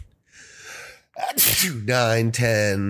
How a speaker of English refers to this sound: The sneeze was 8.